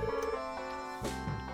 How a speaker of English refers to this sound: My phone's ringing, apparently. Please hold.